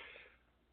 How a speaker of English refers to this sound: Fucking yawn real quick.